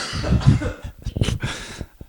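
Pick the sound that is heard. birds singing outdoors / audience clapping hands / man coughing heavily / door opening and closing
man coughing heavily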